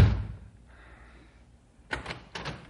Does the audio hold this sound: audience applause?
no